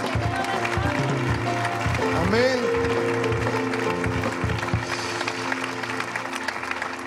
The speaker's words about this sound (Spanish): Amén. Amén. Denle un aplauso bueno a Dios si se lo quiere dar.